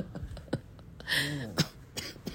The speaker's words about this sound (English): You're coughing.